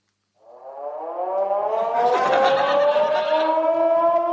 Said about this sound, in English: Oh my gosh! The siren was getting louder and louder.